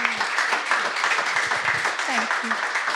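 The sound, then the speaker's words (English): A crowd applauds steadily for the full stretch, a dense, even wash of many hands clapping, with a few brief voices and whoops rising through it. “Yeah, give really them a big round of applause.”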